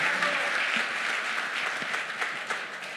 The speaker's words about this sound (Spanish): Dar un aplauso,